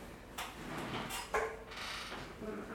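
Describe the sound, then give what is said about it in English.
A fan creaks and squeaks in short, uneven strains over a steady airy whir, fairly quiet. “All I can hear is the creaking in the fan.”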